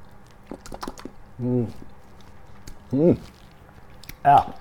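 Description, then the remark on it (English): Wet mouth noises: soft smacks and clicks of someone licking a spoon used to mix Japanese dressing and mayonnaise, broken by three short, murmured hums of enjoyment, with no words spoken. “I am a bit of a spoon licker.”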